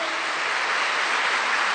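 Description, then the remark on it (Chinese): A church audience applauds to give God a round of applause, a dense wash of many hands clapping at an even, loud level throughout, with no voices rising above it. “他真的是台湾之光，给上帝一个掌声。”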